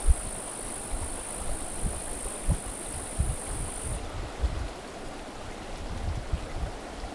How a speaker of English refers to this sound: It can change in a heartbeat here at Heartbreak Meadows. So it's now cloudy, picking up wind. But it'll probably open back up. But notice the flow of our little stream is remarkably constant.